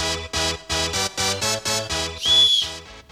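A steady, pulsing musical beat plays, then a single short, shrill referee's whistle blast rings out loudly near the end before the music fades.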